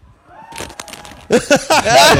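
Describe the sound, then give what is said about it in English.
A crowd cheers and whoops after a Walmart employee's angry quitting announcement, with scattered shouts at first that swell into loud, overlapping bursts of hollering in the second half. “Everyone's cheering.”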